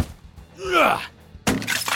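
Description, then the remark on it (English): A shrill, warbling cry from a spider is followed by a sudden, loud crash of the spider slamming into a wall, with a clattering, shattering tail that fades over half a second. “When that didn't work, it crashed into the wall.”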